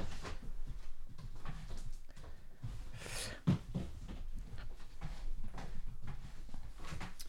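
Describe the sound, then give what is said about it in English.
A single dull thump of a bedroom door being shut, heard midway through an otherwise quiet stretch of low rumble, with no one speaking. “Close the bedroom door and put the canvas up against the table.”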